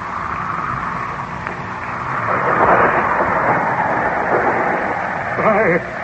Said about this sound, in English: Look! The storm is increasing again. It sounds almost as if the voice of the heavens is protesting.